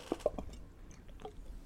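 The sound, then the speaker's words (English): A beer can being cracked open into a microphone: two or three quick, soft clicks and pops with a faint fizzy squish, fairly quiet, with no talking. “I can't even speak about this till we crack a beer.”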